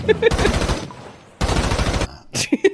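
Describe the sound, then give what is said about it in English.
A drive-by sound effect drop: two loud bursts of rapid automatic machine gun fire, each lasting under a second, separated by a short pause, with brief pitched vocal sounds at the start and end. “Elephant drive-by drop. The classic elephant drive-by sequence that we all know now.”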